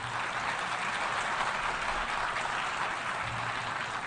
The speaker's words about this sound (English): Well, you applaud now, but at the time, many dismissed my optimism as wishful thinking.